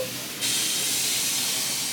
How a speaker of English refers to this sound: And then I saw a second bus arrive.